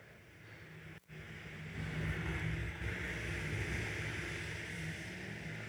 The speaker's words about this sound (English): That is a storm on the Sea of Galilee. So we were sleeping, and all of a sudden we started to hear the windows rattling. We started to hear the wind whipping, and looked outside and saw this. Again, we hadn't seen a wave in 3 days,